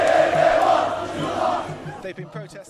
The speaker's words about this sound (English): The crowd was chanting anti-government slogans and screaming, "This is just the beginning, the fight is continuing."